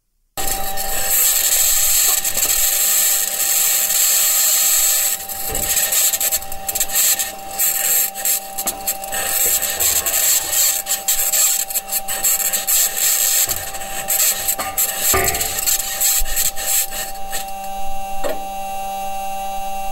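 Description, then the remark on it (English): Audio released by NASA of a Mars rover's wheels rolling over the surface of Mars: a steady, harsh metallic grinding and scraping with a thin high whine and creaky clatter, continuing for the whole stretch with a brief dip midway. No one speaks. “But anyway, NASA released some audio of what this thing sounds like as it's rolling around the surface of Mars.”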